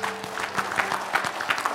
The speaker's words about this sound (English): With those same hands lifted up and give God a big clap offering.